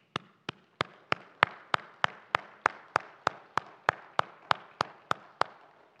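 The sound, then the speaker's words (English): An audience claps in steady unison, sharp loud claps arriving about three times a second over a softer wash of scattered clapping, with no voices. “I don't think it would be inappropriate for us to praise God with a round of applause for His most remarkable creation.”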